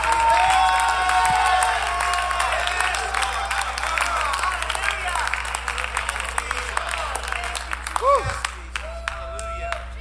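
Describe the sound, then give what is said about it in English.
An audience claps and cheers in praise of the Lord in a dense, sustained burst of applause, with scattered shouts rising over the steady clapping, loud throughout before easing slightly near the end. “Oh, somebody clap your hands and love the Lord if you believe it.”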